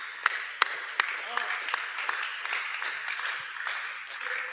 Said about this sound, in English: Clap for Jesus.